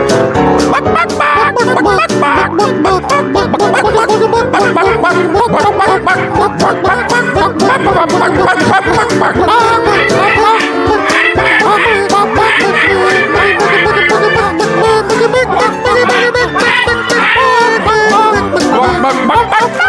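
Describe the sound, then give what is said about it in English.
Loud, busy music plays throughout while people doing chicken karaoke cluck and squawk along, imitating chickens in a rowdy, continuous stream over the track. “We do chicken karaoke to this one.”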